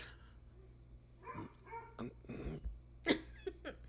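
A dog barks several times in short, uneven bursts, fairly quiet, over a low steady background hum with no talking.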